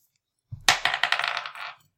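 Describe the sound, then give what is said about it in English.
A single d20 die clatters across a hard table, a sharp initial strike followed by a quick series of rattling bounces that fade out within about a second, fairly loud. “This dice loves the 19.”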